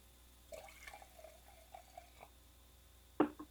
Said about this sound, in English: I'm just going to pour the rest of my bottle into my glass. Yes. All right. Wait, hold on. Let me get some good audio of me doing that.